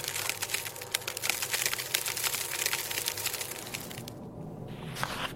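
Glass cracking and splintering in a dense, continuous crackle of sharp snaps, fairly loud, easing briefly near the end before a few final cracks.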